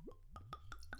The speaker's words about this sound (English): Yeah, it's good when the glug starts from within the bottle.